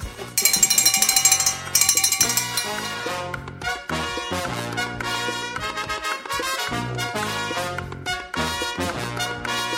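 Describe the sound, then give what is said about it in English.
A bell rings loudly with bright, metallic tones, starting in two strong bursts and then continuing as a dense run of repeated strikes. No one speaks. “Ah, and with that lovely sound of the bell,”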